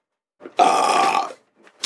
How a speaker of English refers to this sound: Gas! Oh, I hate you, fucker. Sorry, we burp, we drink.